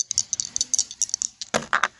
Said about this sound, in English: So, I'm going to roll 2 dice and see where the elevator takes me.